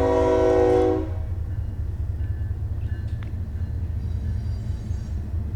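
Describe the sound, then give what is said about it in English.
A train horn blares loudly for about a second, then cuts off, leaving the deep, steady rumble of a train rolling past with faint ringing tones above it. “Let's wait for the train to go by.”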